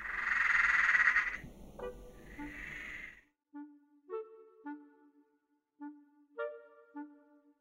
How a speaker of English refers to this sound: Let me open the window real quick. It's been really nice, actually, being serenaded by frogs. I wonder what types of frogs they are, though.